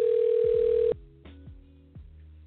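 A loud, steady telephone dial tone hums for about a second, then cuts off, followed by a few short, quieter electronic blips as the call is placed. No one speaks.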